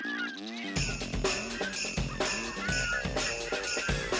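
Jingle bells shake in bright, loud bursts on a steady beat, layered over a busy festive Christmas tune that opens with a few honking, horn-like notes.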